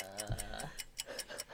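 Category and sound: household object, game timer ticking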